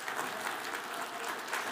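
An audience applauds steadily, a dense, continuous patter of many hands clapping at moderate volume with no voices standing out.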